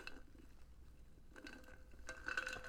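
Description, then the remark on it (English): Someone sips coffee from a mug, with quiet ceramic clinks and soft handling noises, the brightest chink near the end. It is faint, with no talking. “Let me drink some more coffee.”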